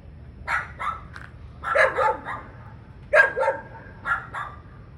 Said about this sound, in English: So the dog, I've got some video footage of it. The dog's looking in the water. It's like a husky type dog, looking in the water, freaking out at the fish, barking away at the fish. I'm surprised it didn't jump in.